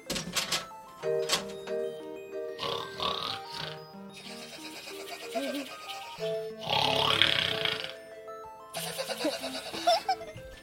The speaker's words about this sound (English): I think he's out snoring on the couch. You mean this couch right out here? Yep. Oh, well, let's listen in.